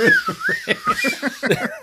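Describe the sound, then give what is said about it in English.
Someone imitates a spinning whistle toy with a thin, wavering tone that swoops up and down for about two seconds, while choppy bursts of laughter pulse underneath. “There's that whistle thing that you spin around and goes.”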